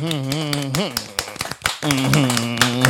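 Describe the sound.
Scattered, irregular hand claps from a small group, sharp, mostly under a sustained voice and briefly clearer when the voice pauses midway.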